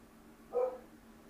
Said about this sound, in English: Goddamn, neighbor's dog. We get it, you're a dog.